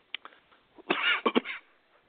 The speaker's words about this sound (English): You okay? Yeah, just coughing.